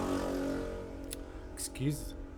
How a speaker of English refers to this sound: That yellow motorcycle that passed by.